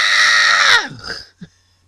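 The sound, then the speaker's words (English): A voice lets out a loud, sustained scream of frustration that slides down in pitch and trails into a strained groan, then a brief grunt follows. “You know what really makes me so mad that I just want to scream and shout? Made me want to go.”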